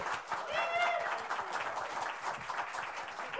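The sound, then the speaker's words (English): An audience applauds steadily for a few seconds as comedian Craig Shoemaker is introduced and walks on, a dense wash of clapping mixed with cheering voices and a brief rising whoop near the start. “I don't walk into applause.”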